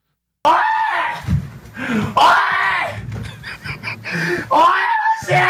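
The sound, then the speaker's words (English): A child screams and wails loudly as the father smashes a brand-new PS4 and a TV with a sledgehammer, in repeated anguished bursts with shrill, strained cries rising and falling over about five seconds, with noisy rumbling underneath. “And the kid's screaming, Dad's smashing it with the sledgehammer.”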